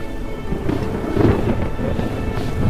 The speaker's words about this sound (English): Storm of the century is upon her.